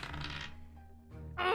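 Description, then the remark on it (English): Dice rolled for a perception check clatter and roll across a hard tabletop, rattling briefly before settling, followed by another short burst of noise near the end. “Give me a perception check. Okay. I'm so curious. Come on, dice!”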